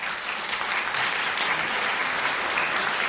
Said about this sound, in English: I don't mean to keep stepping on the applause. There's a lag in the applause. You need to be faster.